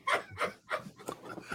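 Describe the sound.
A person barks like a dog, about four rough, yelping bursts in quick succession at a steady rhythm, fairly soft, with no talking around them; a member of a family in West Virginia, USA, who bark instead of speaking.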